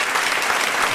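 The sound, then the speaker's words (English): Steady applause from an audience, a dense wash of many hands clapping at once, loud and even throughout with no voices standing out. “Why are we clapping for him?”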